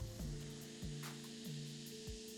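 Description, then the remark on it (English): A steady hissing fizz of a carbonated drink, with soft low knocks or thuds repeating roughly every half second underneath. No voices. “Oh, you can hear the fizzing.”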